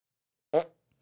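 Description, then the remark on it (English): A short, loud vocal imitation of a relaxed fart, a single buzzy blurt that trails off quickly, followed by silence and the start of another sound at the end. “Now, give me your best fart if you're hanging out with the homies, you're chilling, you've had some Taco Bell.”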